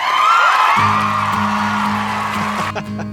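Loud crowd applause and cheering with a high whoop at the start, joined by a low, steady droning tone underneath; the noisy clapping cuts off sharply just before the end.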